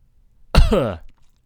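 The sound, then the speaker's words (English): A single fairly loud cough: a sharp, harsh burst that trails off into a brief throaty rasp, with near silence before and after. “Sorry, I'm coughing.”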